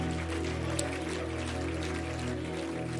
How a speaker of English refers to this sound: Can you clap your hands unto the Lord one more time?